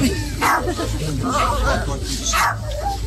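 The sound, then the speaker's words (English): A dog that has fallen into a grave hole barks three times at a steady pace, loud, during a burial while a priest gives a eulogy, with murmured voices and background noise running underneath. “He was there for a few minutes while the priest gave his eulogy and was barking the whole time.”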